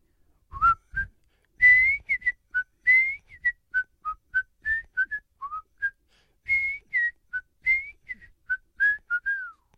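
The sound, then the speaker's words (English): A person whistles a bright, bouncy TV show theme tune, with a steady run of short and held notes rising and falling over about ten seconds and no talking. “I think it went something like this.”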